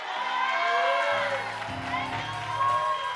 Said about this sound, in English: If you receive it, why don't you give God a big shout and a hand clap of praise tonight?